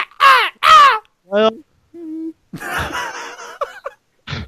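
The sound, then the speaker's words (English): A person mimics crows cawing, with two loud, harsh caws in quick succession, followed by lower hoots and a stretch of raspy, squawking vocal noises. “It sounded like crows.”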